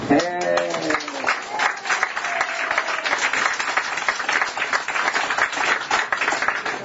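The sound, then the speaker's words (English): An audience breaks into steady applause for people attending for the first time, dense overlapping claps sustained for several seconds, with a brief voice and some crowd murmur at the start before the clapping takes over. “So, if you want to raise your hand, you certainly can, and we can clap for you.”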